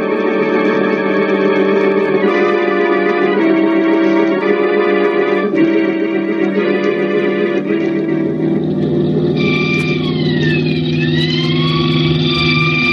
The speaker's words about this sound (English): Hey, is 70 the best you can get out of this car? I got my foot down to the floor now.